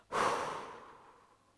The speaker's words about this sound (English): And then when we breathe out, we're going to breathe out through our mouth and we're going to go.